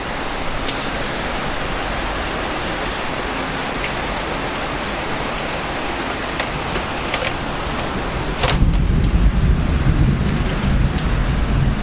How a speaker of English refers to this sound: The sound of rain is just so calming.